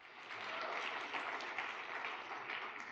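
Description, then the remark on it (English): A crowd at a church event applauds steadily to welcome a pastor, a dense, even wash of many hands clapping at once with a few sharper claps standing out, sustained without any talking over it. “I always tell people don't clap until it's over, because you don't really know if it's going to be any good.”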